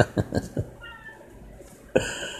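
A pet cat meowing at its owner gives a short, fairly soft meow midway through, preceded by a few quick vocal bursts and followed by a sudden louder noise near the end.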